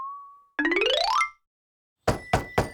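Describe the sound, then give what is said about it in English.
Three sharp knocks on Sabretooth's door just after dawn in quick succession, loud, following a brief ringing tone and a rising, cartoonish whistle-like sweep. “It was just after dawn, and there was already someone knocking on Sabretooth's door.”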